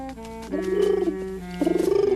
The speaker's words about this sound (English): Oh, how sweet. A beautiful dove, the symbol of peace.